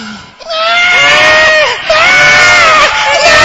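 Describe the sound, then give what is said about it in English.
A newborn baby screams in two long, piercing, loud wails, each cry wavering up and down in pitch with a brief gasp between them, in a nativity skit portraying baby Jesus being born in a manger. “And Jesus was screaming.”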